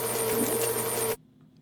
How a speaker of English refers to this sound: Well, that was supposed to be crickets, but it doesn't really sound like. Sorry. It sounded like a washer dryer combination there. I got to download a new sound.